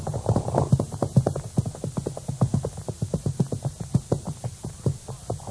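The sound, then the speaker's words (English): Horses' hooves clip-clop steadily at a quick, uneven pace as several horses cut across a cottonwood patch toward a watering pond, the sharp hoof strikes dense and continuous throughout with no voices. “These poor horses certainly are anxious to get to that water.”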